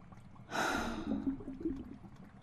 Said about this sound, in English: Oh, I love that he's still like out of breath, even though he's just breathe, suffocating. So he's trying to get as much air in as he can.